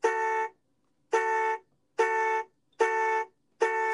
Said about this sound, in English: So let's get ready. Sound the horns.